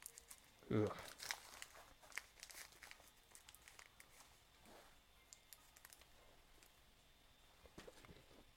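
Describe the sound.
Crisp crinkling and rustling of wrapping paper, with a louder burst of crumpling near the start, then scattered soft crackles and a few short tearing sounds, with faint voices underneath.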